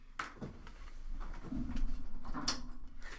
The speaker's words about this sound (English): I locked my door because I got scared.